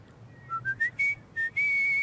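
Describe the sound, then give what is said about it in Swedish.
A person whistles a short, bright tune of several rising notes, ending on a long held tone, clear with no talking. “…, 5,5, undrar, kan du vissla?”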